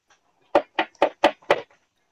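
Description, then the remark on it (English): Five quick, evenly spaced knocks on a wooden door, fairly loud, with a solid hollow thud to each rap and no voices. “I'm gonna go knock on their doors.”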